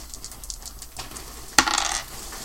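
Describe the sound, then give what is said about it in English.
Two dice clatter onto a hard table with one sharp impact and a brief rattling tumble, preceded by a few faint clicks, with no talking. “Could someone give me two dice?”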